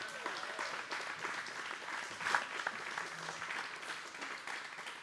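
A crowd applauds steadily, a dense wash of clapping that holds at an even, moderate level throughout, with a few sharper claps and faint voices mixed in.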